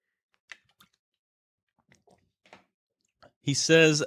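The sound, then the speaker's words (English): A few soft mouth sounds of sipping and swallowing water, scattered quiet clicks and gulps over a few seconds, followed by a man beginning to speak. “Let me get a sip of water before I read this last quote.”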